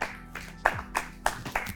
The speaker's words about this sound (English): Hey, what are the camera guys clapping, huh? They're happy too.